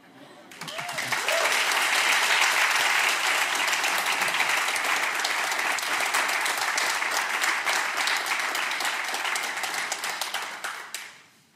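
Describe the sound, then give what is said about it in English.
An audience bursts into sustained applause, a dense, loud wash of many hands clapping that holds steady for around ten seconds before fading quickly to silence. “I think that's worthy of the applause that you just gave.”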